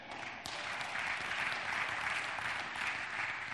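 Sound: audience applauding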